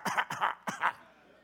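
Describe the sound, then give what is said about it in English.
A man fakes a dry, raspy old-man cough as if coughing up dust: three quick, wheezy hacks in close succession, loud, trailing off into quiet with no talking. “Coughing up dust.”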